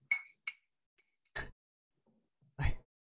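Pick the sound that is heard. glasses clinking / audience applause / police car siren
glasses clinking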